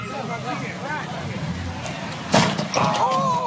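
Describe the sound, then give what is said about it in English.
Voices murmur until one sudden, loud crunching impact as a white SUV smashes into a silver SUV in the street, followed by a brief ringing, squealing tone as the chatter continues. “The white SUV smashes into the silver SUV one more time.”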